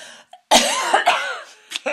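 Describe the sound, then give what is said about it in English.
One loud, abrupt sneeze bursts out, a sharp explosive blast with a brief voiced tail, followed by a quieter breathy sound. “Bless you.”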